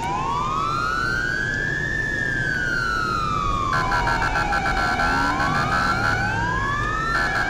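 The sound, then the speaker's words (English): A loud, steady emergency vehicle siren in a video game wails continuously, its pitch sweeping slowly up and down, with a second rapid warbling tone joining in partway through over a constant rumbling background. The sirens were redone to sound like real local sirens. “For those that are new, I redid the sirens. Sounds similar to the sirens here, where I live.”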